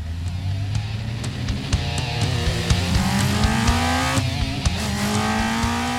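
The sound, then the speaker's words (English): A car engine revs hard and pulls away in a hurry, its pitch climbing steadily as it accelerates, with a brief screech of tires mixed into the loud roar. No one speaks. “exited the basement and rushed to his car.”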